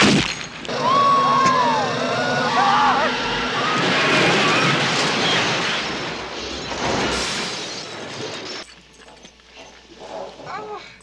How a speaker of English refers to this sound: Oh, yeah, I'm sure after a car gets totaled by smashing into a brick wall and a metal gate, I'd walk out with just a scratch on my head, too!